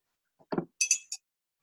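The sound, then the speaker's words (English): A soft knock, then glasses clink together in a toast in three quick, bright, ringing taps, fairly quiet, with no voices. “Cheers.”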